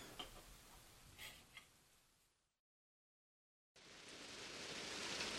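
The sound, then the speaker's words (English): Steady rain hisses loudly with faint scattered taps during a storm, cuts out to total silence for about a second, then returns as a dense, building downpour. “Oh my god, why does it have to be raining?”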